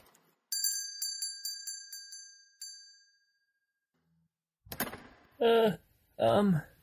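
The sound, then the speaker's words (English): A bright, ringing phone notification chime plays as a quick run of repeated tinkling tones, then one final tone that fades out. After a short silence, someone starts talking. “New notification. Mr. Jones added $40 to your fee.”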